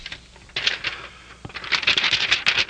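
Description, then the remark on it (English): Sheets of ad copy rustle and crinkle in quick, scratchy bursts, pausing briefly before a busier stretch of handling toward the end. No one speaks. “Yes, rustling the ad copy here.”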